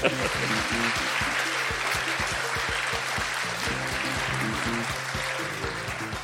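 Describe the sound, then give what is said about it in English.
An audience at the Politics Festival applauds its organisers steadily for several seconds, a dense, even wash of clapping that stays loud throughout, with faint voices murmuring underneath. “So big round of applause for them.”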